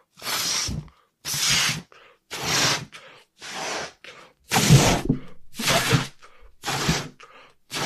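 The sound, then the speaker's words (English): Someone blows hard into a balloon in about eight strong, breathy puffs, each followed by a quick, quieter gasp for air, in a steady rhythm with no talking. “Well, give me a second so I can blow it up real quick.”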